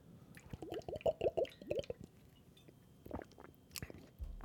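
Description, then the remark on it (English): Drinking from a water bottle: a quick series of wet gulps and gurgling, bubbly pulses over about a second and a half, followed by a few softer swallows and a breath. “Good old water bottle that apparently, according to the co-hosts of Half in the Bag, sounds like I'm hitting the world's biggest bong while I'm drinking this.”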